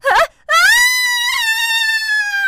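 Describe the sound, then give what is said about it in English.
A voice imitates falling off a cliff: a short yelp, a brief pause, then one long, loud, high-pitched scream held steady for about two seconds. “Fell off a cliff.”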